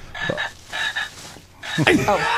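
A frog-shaped dog toy croaks in three short, raspy bursts, the last one louder and longer, with a brief voice overlapping at the end.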